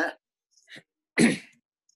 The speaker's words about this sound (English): So let me cough. Let me cough for a second. Aircon, dry air.